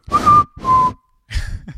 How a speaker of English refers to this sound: I can only do a whistle that you do for a dog. Just one of these.